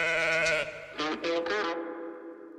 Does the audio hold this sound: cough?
no